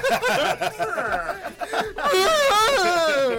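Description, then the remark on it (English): A loud, drawn-out voiced yawn rises into a wavering, moaning tone that holds to the end, after a stretch of choppy, chuckling vocal bursts. “This is the middle of a yawn, right?”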